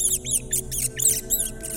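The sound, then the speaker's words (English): A rat squeals in a church nave in a rapid series of shrill, high-pitched chirps, about six or seven sharp, rising-and-falling squeaks in quick succession over a low background hum. “The rat's squeals echoed through the nave, reverberated in the aisles, and were cut short with the soft crunch of delicate bones.”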